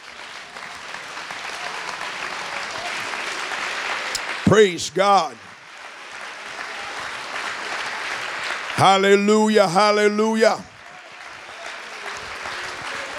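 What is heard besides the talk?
audience clapping hands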